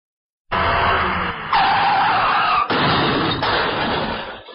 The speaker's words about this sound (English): Like a car crash, right?